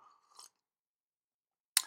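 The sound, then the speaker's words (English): A quiet sip of coffee from a cup, a brief soft slurp, then a pause and a short, sharper clack near the end. No one speaks. “Let me have a sip of coffee before I continue.”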